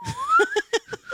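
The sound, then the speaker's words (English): A person imitates whistling with a steady, slowly rising tone, broken by a few short, rhythmic giggly bursts over about a second, moderately loud. “just whistling the whole fucking time.”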